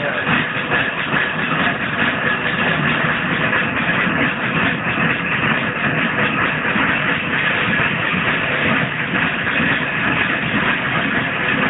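A traction engine running along a road rumbles steadily for the whole stretch, a dense mechanical clatter and hiss with a faint rhythmic pulse running through it, holding an even loudness throughout with no voices.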